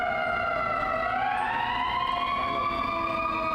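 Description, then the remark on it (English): An unusual-sounding siren holds a steady, layered multi-tone wail that slowly bends upward partway through, fairly loud and continuous throughout, with no voices over it. “That's that weird one.”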